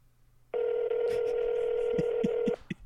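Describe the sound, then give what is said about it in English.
A telephone line rings during a prank call with a single steady, mid-pitched electronic tone held for about two seconds before cutting off, with a few soft thumps near the end and no talking. “I still call it. It's ringing.”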